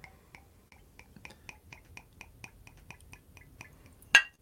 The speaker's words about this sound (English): All right. Well, I'll do the honors of pouring.